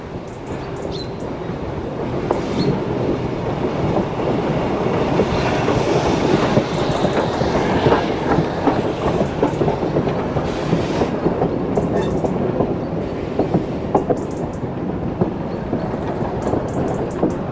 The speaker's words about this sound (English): After that, we travel to Keystone to record the train's arrival. I'll bet some excited children are waiting for this magical moment together.